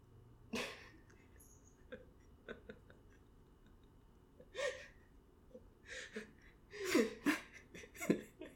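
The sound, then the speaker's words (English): A cat named Happy sneezes several times, short sharp hissy bursts spaced irregularly, with the last few coming in a quicker cluster over a soft, quiet background. “That background noise was our cat Happy, I think, sneezing.”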